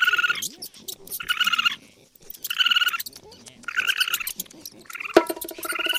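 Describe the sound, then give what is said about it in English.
Raccoons in a house chitter and trill in repeated bursts, roughly five shrill, warbling calls broken by brief pauses, fairly loud, with no one talking. “at least Doug did get rid of all those raccoons. No. Oh. No, he didn't. They're still in the house.”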